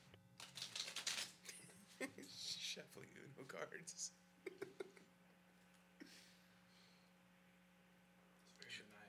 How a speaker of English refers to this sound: Shuffling cards is maniacal. Also, it's fun.